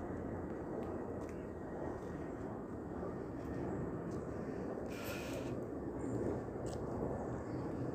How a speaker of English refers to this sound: And here comes the airplane right at that point. So where was I? So we have this, oh, I think there's another plane coming from the other direction too.